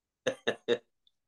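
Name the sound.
cough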